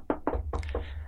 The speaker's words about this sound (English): Don't jinx it. Yeah, my fault. Knock on wood.